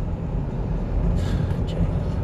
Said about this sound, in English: Oh, the sound of somebody with a small penis. Jesus Lord, fucking loud cars.